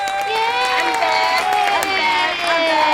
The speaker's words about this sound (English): so everybody give a nice applaud for Alyssa